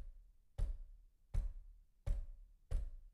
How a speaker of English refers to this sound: I was sitting in my bedroom reading a book, Adele says, when at about 11 p.m. I heard a knocking, a slow, constant one.